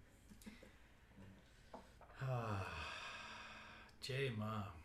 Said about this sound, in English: Okay. He heard a noise outside. It's okay, buddy. So yes, anyone else hear doggy sounds? Now you know why you're hearing doggy sounds. Yeah. There's a sleeping pug here, and he's snoring, and he just got startled.